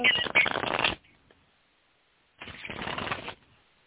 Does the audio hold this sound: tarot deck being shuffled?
yes